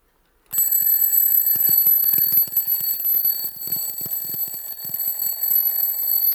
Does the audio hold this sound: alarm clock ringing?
yes